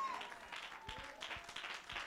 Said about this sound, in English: Let's clap our hands and give God the praise.